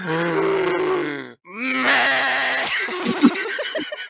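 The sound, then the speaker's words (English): A person imitates a goat-like sheep bleat, letting out two loud, quavering nasal cries, the second longer and breaking into a shaky, trembling warble. “Dude, that's literally, like, more goat than sheep.”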